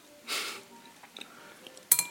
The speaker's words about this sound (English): I wonder if that you dropping the shells in the bowl sounds a little bit like jingle bells.